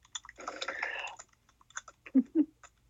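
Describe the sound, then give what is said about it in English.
Fairly quiet clicking of typing on a keyboard: an early burst of rapid, overlapping clacks, then a handful of separate taps, the last two somewhat heavier and duller. “Stop typing.”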